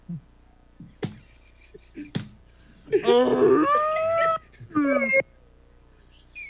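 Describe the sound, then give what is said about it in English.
Recorded whale song plays from a device: a long, wavering, high moan with sliding tones, then a shorter rising call, after a few sharp clicks and taps. “Oh, you went for the whale sound version.”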